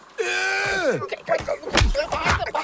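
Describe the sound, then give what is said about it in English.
A long, strained groan slides down in pitch, then a flurry of heavy punches lands, thudding smacks mixed with short grunts and gasps, from a fistfight of one person against five. “I took punches to every part of my frame and gave as good as I got to all five of them.”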